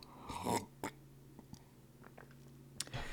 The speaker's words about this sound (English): So, damn, I got some water here too, guys. I'm going to sip this water,